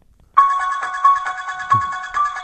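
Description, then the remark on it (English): A cell phone ringtone plays the Halloween movie theme, a repetitive horror melody in steady pulsing notes, fairly loud, starting after a brief silence with no talking. “I'm getting my cell phone out, because I actually have a ringer on my phone of the Halloween music.”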